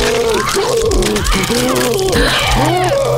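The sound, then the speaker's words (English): A badly injured person lying on top of a stack of bodies gasps for breath in strained, groaning heaves, loud, the ragged vocal sounds rising and falling continuously for a few seconds. “And the one on the top started gasping again.”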